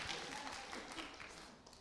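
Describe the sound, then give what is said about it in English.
A crowd claps in a steady, dense patter that holds its level throughout, the many overlapping hand claps blending into a continuous wash of applause. “Round of applause.”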